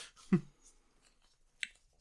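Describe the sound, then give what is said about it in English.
A stiff cardboard card is pulled from a bag: a dull, papery thump, then a brief scuffle, and a single crisp click a moment later. No one speaks. “Reaching into the bag. Ooh, thick cardboard paper stock.”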